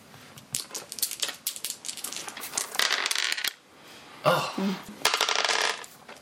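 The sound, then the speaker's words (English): Three dice, rolled for damage in a tabletop game, clatter and tumble across a hard surface in quick bursts of rattling clicks, clear, with a couple of brief pauses between rolls. “Go ahead and roll your damage. This time you're only rolling 3 dice because there are holdout blasters.”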